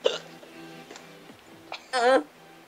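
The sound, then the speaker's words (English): A person makes a few short, sharp hiccups at uneven intervals, ending with a longer, throaty, almost burp-like hiccup. The sounds seem vocally imitated rather than natural. “It sounds like you're burping instead of hiccuping.”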